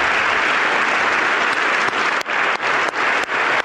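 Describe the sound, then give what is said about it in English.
A crowd applauds steadily while Trump's loud, sharp claps cut through the wash, beating at a fairly even rhythm of about three per second toward the end. “That's Trump clapping, that loud clap.”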